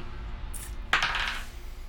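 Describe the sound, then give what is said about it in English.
Dice clatter briefly across a hard tabletop during an attack roll in a tabletop role-playing game, a single sharp roll that rattles for about half a second before settling, with a faint tick just before and low hum underneath. “What is with this fucking dice?”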